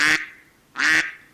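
Two loud, raspy duck quacks, each short and nasal with a brief echoing tail, separated by a pause of about half a second.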